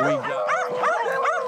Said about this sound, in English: And yes, beagles are notorious for their barking